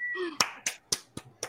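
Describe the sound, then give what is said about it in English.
One person claps alone, five sharp slaps at a steady, quick pace, each clap distinct with no crowd joining in. A brief trailing voice is heard just before the first clap. “I was expecting other people to join in the applause there, so I just kind of look like an idiot.”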